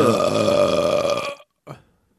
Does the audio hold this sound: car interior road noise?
no